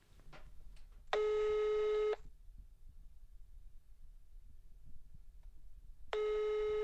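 A phone line rings out with a steady buzzing ringback tone, one long burst, a pause of several seconds, then another, over a faint low hum with no voices.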